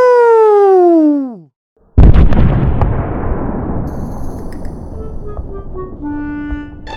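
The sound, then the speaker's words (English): A falling, whistling tone drops in pitch and cuts to a brief silence, then a massive explosive boom strikes as a 9-mile-wide asteroid crashes into the Earth at high speed, followed by a long, loud rumbling decay. “So, unsurprisingly, a 9 mile wide asteroid crashing into the Earth at high speed makes a big crater.”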